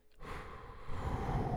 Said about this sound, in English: What's with the heavy breathing? What's going on?